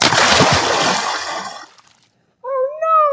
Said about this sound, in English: Just fell into the water. He doesn't know how to swim. Help! Somebody help!